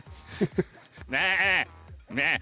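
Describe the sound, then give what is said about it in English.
A person bleats like a goat, getting into a goat voice to read out a message: two quick short grunts, then two long, quavering nasal bleats with a pause between them. “You need to read it as a goat.”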